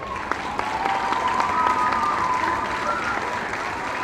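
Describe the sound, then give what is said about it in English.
A large crowd applauds steadily, dense clapping filling the space with scattered cheers and a few whistles rising above it, loud and sustained throughout. “The crowd cheers and begins applauding.”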